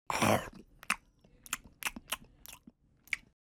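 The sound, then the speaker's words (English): A rustling crunch opens, followed by about six moist munching bites at an uneven, unhurried pace, fairly quiet, a sound effect of a giraffe munching shoots off trees. “He was very good at standing still and munching shoots off trees.”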